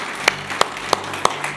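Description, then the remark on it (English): The One Life Church audience claps hands together in a steady rhythm, five sharp beats roughly a third of a second apart, ringing over a soft, continuous wash of crowd noise. No one speaks. “Hey, can we just clap our hands for those who made Jesus Lord of their life?”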